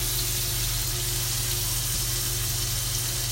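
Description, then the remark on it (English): Steady, dense sizzling of meat frying in a pan, a continuous crackling hiss that stays even throughout, with a low background hum and no talking. “I hope they can hear the sizzling in the podcast.”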